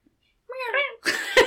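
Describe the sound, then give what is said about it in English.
Human voices mimic a cat: a short, wavering meow, followed right after by a breathy, rasping purr-like rumble lasting about half a second. “Mine was more purr yours, than meow.”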